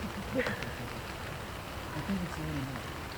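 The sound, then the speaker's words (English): A steady, soft wash of rain patters throughout, fairly faint and even, with a few faint, indistinct murmurs from voices in the background. “For those of you who are listening on the SoundCloud, it's raining.”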